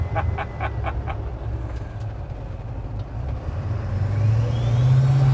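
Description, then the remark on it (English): A pickup truck engine rumbles low on a rolling country road, then climbs in pitch and grows louder as it is floored and accelerates hard near the end, with a few short sharp sounds early on. “Oh, floor it. Let's go. Come on. Right into the sticks.”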